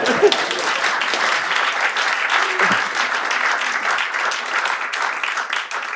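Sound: audience round of applause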